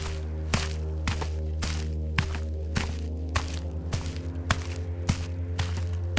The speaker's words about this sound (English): She takes a deep breath and heads for her car. And then she hears footsteps in the snow.